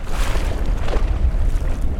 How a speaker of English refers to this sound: Water laps against a dock in Ajiabampo, a coastal town on the southern edge of Sonora. It's a windy, overcast day, and a few raindrops spatter the waves